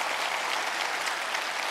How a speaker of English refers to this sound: So I want to give a big shout out and a hand clap to all the soldiers at Fort Hood, Thank you.